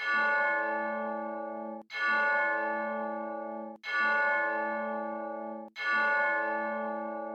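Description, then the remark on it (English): A bell is struck four times in memory of General Colin L. Powell, at a slow, steady pace about two seconds apart, each clear ringing tone sustaining and fading before the next strike, with no one speaking. “We will ring a bell 4 times in his memory.”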